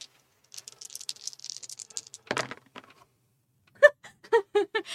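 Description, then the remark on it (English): Dice rattle in a quick, light flurry, land with a dull thud, then clack sharply several more times as they tumble and settle, with no talking. “So let's roll our dice.”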